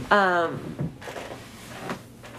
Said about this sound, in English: Excuse me if y'all hear all that in the background. It's me moving in this seat squeaking.